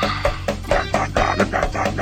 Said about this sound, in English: That's the husky. It's pretty awesome. I gotta tell you, it's pretty awesome.